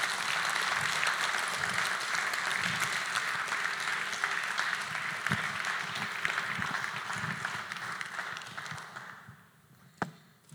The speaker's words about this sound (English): Would you like to hear her story? Yes. Can you give her a big round of applause?